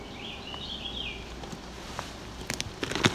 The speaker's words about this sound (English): So it's a sweeter sounding song. It's not one of the dissonant birds. Higher pitch, so that's not a...